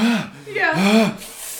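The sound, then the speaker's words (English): A man imitates the pained gasp of someone who broke his femur: two strained, voiced intakes of breath rising and falling in pitch, trailing off into a breathy exhale, moderately loud. “Dude, like, he was just like, it wasn't like a scream. It was just like a... It was more of like a gasp.”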